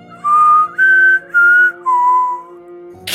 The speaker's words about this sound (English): Right behind us, we heard another whistle. The same exact whistle we heard that night where we both ran home.